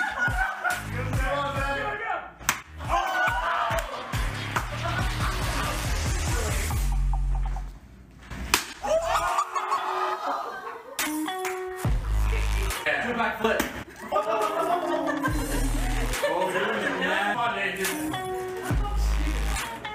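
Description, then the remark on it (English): Several sharp, flat, loud smacks of tortillas hitting people land at irregular intervals amid lively laughter and excited chatter from a small group. “Hey, did you guys know that slapping people with tortillas is absolutely amazingly fun?”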